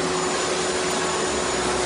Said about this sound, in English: Your husband loves the vacuum. I know. He does. He really loves the vacuum.